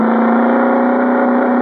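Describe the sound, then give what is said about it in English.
The engine of a suntan and chrome Cosmoroma car purrs with a smooth, steady, even drone, holding a constant pitch and loudness throughout, with no voices. “That suntan and chrome Cosmoroma was all Sonny Wyman claimed it was. It purred like a kitten, performed beautifully.”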